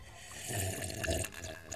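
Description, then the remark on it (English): A person takes a quiet sip of water, with soft slurping and wet mouth sounds over a couple of seconds and no talking. “I'll have a sip of water then.”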